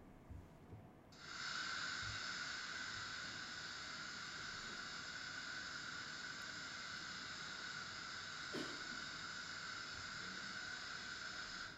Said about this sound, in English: There's apparently pink noise as well, and brown noise. It depends on the frequency. But it sounds more or less like this.